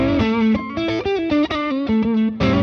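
An electric guitar plays through a Tube Screamer overdrive pedal, picking a melodic run of sustained, slightly gritty notes that shift pitch every fraction of a second, loud with no talking.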